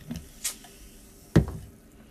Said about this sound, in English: A little splash.